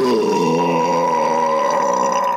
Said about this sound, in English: That was a big burp. Damn. Yeah. That was great.